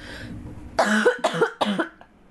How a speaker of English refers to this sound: Oh my God, my fucking cough.